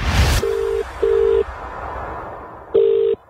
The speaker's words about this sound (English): Melissa rings Mum back